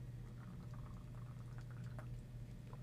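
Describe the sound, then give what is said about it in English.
Coconut water or tea pours with faint bubbling and small splashes and trickles, quiet, over a steady low hum as someone pours a drink. No one speaks. “I'm going to drink some... I got some coconut water and some tea.”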